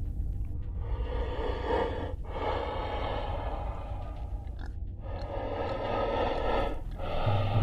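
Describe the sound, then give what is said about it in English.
Heavy, labored breathing in long rasping cycles, roughly four breaths in a steady rhythm, mixed with low grunting. It sounds fairly loud, with no talking. “And then I heard some labored breathing, along with some grunting.”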